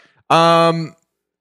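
A single drawn-out, tonal bark from Olive, a terrier on the second floor barking out the front window, loud, lasting well under a second and trailing off with a slight drop in pitch, with silence around it.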